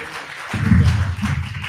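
Audience applause: a steady wash of many hands clapping that swells after a brief moment and stays fairly loud, with no voices over it.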